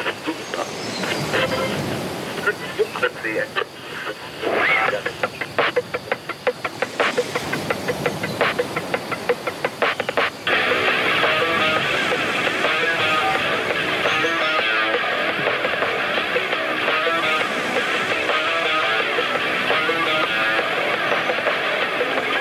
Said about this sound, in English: There should be some waves coming in. You and Edit, some waves coming. Here they are. There's the waves.